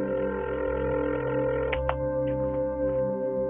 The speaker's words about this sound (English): The phone only rang once before he picked up.